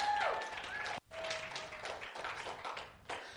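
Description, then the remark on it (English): An audience in a church claps in a dense, steady wash of applause that cuts out for a split second and then resumes, with a few voices calling out over the clapping. “And so Paul says, hey, if you're going to clap, commit to it, let's just go, okay?”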